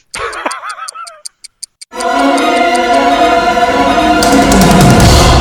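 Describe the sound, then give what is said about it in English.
A voice whoops, then a few crisp, evenly spaced clock ticks sound alone before a loud, dense swell of music enters, with the ticking continuing faintly underneath. “Anyway, what is this distracting ticking that I hear?”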